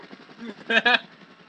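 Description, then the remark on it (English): A helicopter flies overhead, droning steadily with a faint rhythmic rotor chop, and a short voiced burst cuts in over the noise midway through. “But I do love the sound of a helicopter.”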